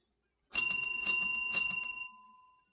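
A small bell rings with three quick strikes about half a second apart, its bright metallic tone sustaining and fading slowly after the last strike.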